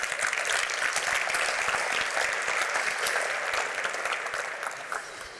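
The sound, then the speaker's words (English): A crowd at a NAIOP Symposium event claps steadily, a dense wash of many hands holding at an even loudness before tapering slightly near the end. No one speaks over it. “So quick round of applause and thank you for that.”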